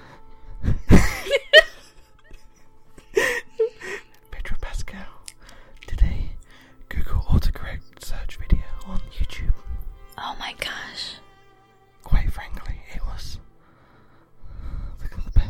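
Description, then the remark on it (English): Heavy breathing pushes right into a microphone in irregular bursts, with breathy gasps and whispery exhales and occasional low thumps from air hitting the mic. “God, I don't like that you're breathing into the microphone.”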